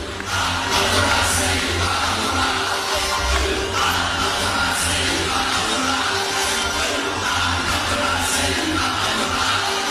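A large crowd at a fight entrance roars and chants "Ooh Ah Up the Ra" in unison, a chant referencing the IRA, a dense, loud wall of voices with rhythmic surges over a steady low rumble, continuing throughout.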